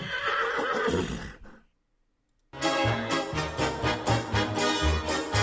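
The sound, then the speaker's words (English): A loud horse neigh for Wild Horse Pizza rings out, breaks off into a brief silence, then a steady, rhythmic run of hoof clip-clops follows over a full, busy backdrop. “Wild Horse Pizza.”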